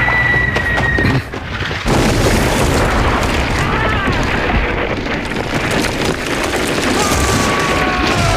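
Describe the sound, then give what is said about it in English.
Artillery shells burst in a heavy, rumbling barrage, a dense wall of booming blasts and crackling debris with a brief lull near the start before the roar resumes. “Oh, incoming!”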